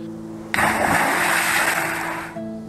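A loud splash as a man jumps from a high rock into the water hits abruptly, then becomes nearly two seconds of churning, rushing noise over a low steady hum before cutting off sharply. No one speaks.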